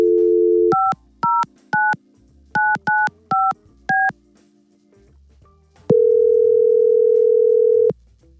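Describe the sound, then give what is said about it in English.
A steady dial tone, then a quick series of seven touch-tone key beeps as a number is dialed, followed after a pause by a long, loud ring tone. No one speaks. “We're going to try to get her on the phone and set them up.”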